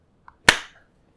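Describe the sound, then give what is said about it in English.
A single sharp, loud hand clap with a quick decaying tail, preceded by a faint small click. There is no talking. “All right, I'm going to clap.”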